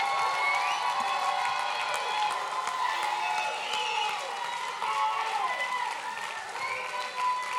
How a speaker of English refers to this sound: If you receive that, take 30 good seconds, clap your hands one more time, and give the mightiest shout of victory to God.